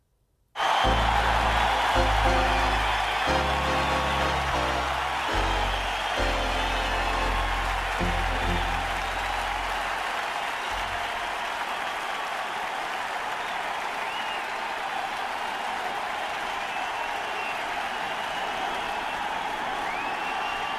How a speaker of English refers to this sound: So this was the president at the time, George W. Bush, being unanimously cheered by a roaring Yankee Stadium.